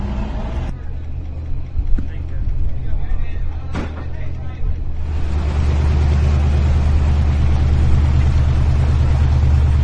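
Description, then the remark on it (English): A big jacked-up truck engine rumbles loudly, its deep growl swelling after a few seconds as it pulls out, with faint background voices beneath. “a lot of rednecks, big jacked up trucks are pulling out.”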